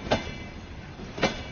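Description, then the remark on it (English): A train rolls along the rails into the town of Churchill with a steady low rumble, punctuated by two sharp clacks of wheels crossing track joints about a second apart. No one speaks. “How was it when that train rolled in?”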